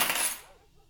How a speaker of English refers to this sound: She takes the wooden dowel and places it in the glass vase marked keyring. The keys dangle and clank as it drops to the bottom.